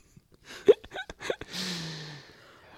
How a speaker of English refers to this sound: Please cough right into the microphone.